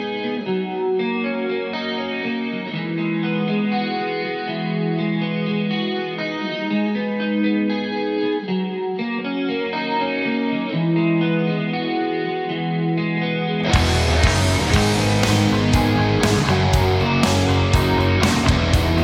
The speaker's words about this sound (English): So let's have a listen to the intro here. It's a nice little tempered, clean riff, which leads into a distortion-heavy backing riff.